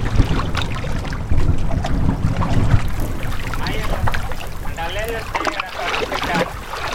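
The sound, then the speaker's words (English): Boats of island natives approaching through water, with steady splashing and sloshing under a rush of wind noise, while faint voices call out partway through. “Lieutenant! Boats! They look like island natives.”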